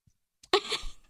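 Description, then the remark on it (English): A single weak, breathy fart noise made with a hand, opening with a sharp pop and trailing into an airy, hissy splutter for about half a second before cutting off. “Mine sound like a so gassy weak. Fart.”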